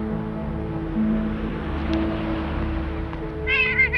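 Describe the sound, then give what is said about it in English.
A cat up on a high spot, refusing to come down, gives a single short, high meow near the end, heard over a steady low rumbling hum that fills the background throughout. “Come on down, you dumb cat.”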